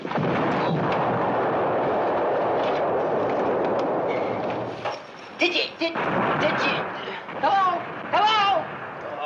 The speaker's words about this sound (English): While Radar tries to stop the camp from being shelled by their own artillery